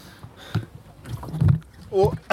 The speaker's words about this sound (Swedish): Ska se om de kan borda mig här på något sätt. I min lilla roddbåt.